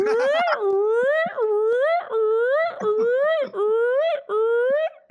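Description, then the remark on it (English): A voice imitates the alarm of a fire-exit door going off as the door is pushed open, looping about six rising, siren-like sweeps with barely a pause between them, loud and steady over roughly five seconds. “Immediately, an alarm goes off.”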